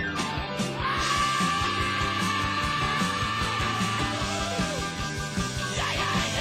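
A rock singer lets out a raw, strained screech over a loud, driving band, the wailing voice bending up and down above steady drums and distorted guitars.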